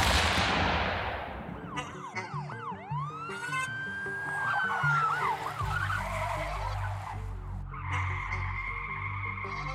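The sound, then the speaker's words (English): A loud cannon blast booms at the start and rumbles away over a second or so, followed by wavering siren-like sweeps and croaking, warbling noises with a low hum underneath. “It's time to get the cannon blast and the short bus up, because we are going to talk about lily-livered on episode 181.”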